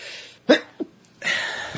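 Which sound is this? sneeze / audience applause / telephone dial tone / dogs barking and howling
sneeze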